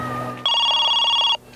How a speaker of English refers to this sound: Oh, someone's ringing me, I think. It was my mum.